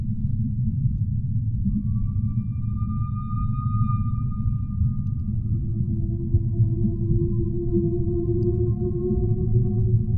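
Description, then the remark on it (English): Humpback whale song: long, drawn-out tonal moans that slowly rise and glide, layered over a constant deep underwater rumble. No voices, just the eerie calls carrying through the water. “Such amazing creatures. What are they saying about us?”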